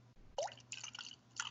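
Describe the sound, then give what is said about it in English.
Woodford Reserve whiskey poured from a large bottle into a glass in a brief series of liquid glugs and splashes, starting with a bubbly gurgle and trailing into soft dribbling, fairly quiet with no one talking. “I'm going to pour a little in.”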